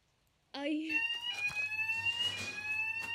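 A smoke alarm suddenly starts blaring, a loud, steady, high-pitched electronic tone that holds without a break while voices talk over it.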